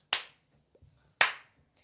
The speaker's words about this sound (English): In the corner of the room, we hear the ghastly, slow clap of Samantha Jones. Ghostly. It's actually quite lovely. It's not ghastly, it's ghostly.